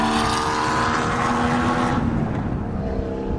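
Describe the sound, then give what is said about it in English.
Porsche race cars scream past following the pit car, a high-pitched engine whine sweeping loud and steady before dropping off as they pull away, with continuous rumbling motor noise underneath and no talking. “It's a high whine pitch for the Porsches.”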